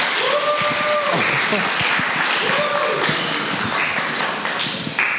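An audience at a storytelling event claps steadily and loudly to welcome the next speaker, a dense, continuous patter of many hands, with a couple of drawn-out cheering whoops rising above it early on.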